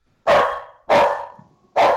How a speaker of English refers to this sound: Hold on. The dog is barking.